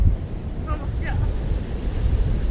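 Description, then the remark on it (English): Ocean waves wash against lava rocks at Kaina Point, far out from Waikiki, in a steady, low rumbling roar, with wind buffeting the microphone throughout and a brief faint chirp partway through. “Waves hitting these rocks.”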